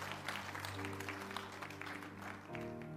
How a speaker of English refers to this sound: Can you give Jesus some praise in this house? Give God a hand clap today. Amen.